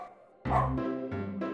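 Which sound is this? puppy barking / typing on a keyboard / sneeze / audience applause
puppy barking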